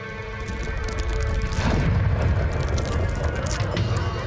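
A ship crashes into the dock at the end of the wall: a deep, sustained rumbling roar swells into a heavy crunching impact midway, with grinding and thudding debris continuing loudly to the end.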